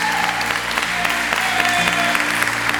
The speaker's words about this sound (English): So what I want y'all to do is I want y'all to make a big round of applause for Richard. I know he's gonna hear us online.